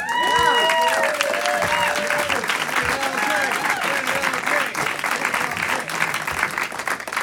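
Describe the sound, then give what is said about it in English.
A comedy audience claps loudly and steadily as comedian Keith Lowell Jensen is introduced, with rising and falling whoops and cheers piercing the applause, especially in the first few seconds. “Ladies and gentlemen, please give it up for Keith Lowell Jensen.”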